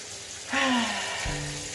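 shower water running

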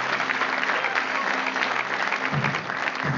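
audience applauding

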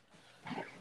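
dog barking

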